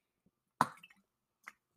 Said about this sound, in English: Like I said, I have a bunch of hydro jugs, so I'm going to take a little sipsy quick.